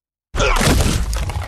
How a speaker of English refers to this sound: His knees buckled, sending the target crashing limply to the floor, audibly breaking his kneecaps as he did.